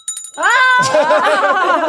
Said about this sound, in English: Do you need a refill? Yeah, I do, actually. Oh, we got a bell for that.